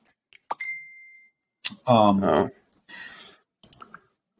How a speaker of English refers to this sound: Sorry about that. Turn my phone off.